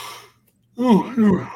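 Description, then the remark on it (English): A person yawns: a breathy exhale fades to a short pause, then a drawn-out voiced yawn with a pitch that swoops up and down in two stretched waves. “You yawning already?”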